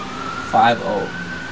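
A fire truck siren wails as it drives past, a sustained tone with a short, louder swooping rise in the middle, over a low background hum.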